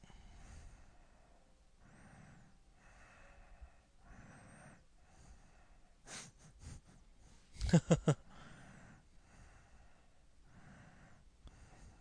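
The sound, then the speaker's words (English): Recorded snoring plays back from a tape in a steady, rhythmic cycle of rasping breaths, fairly quiet and slightly muffled, with a sharper, louder snort bursting out about two-thirds of the way through. “Oh, it's the snoring one.”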